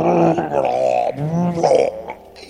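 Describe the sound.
A voice imitates loud snoring, with a few drawn-out, rasping, throaty snorts in quick succession and no other sounds around them.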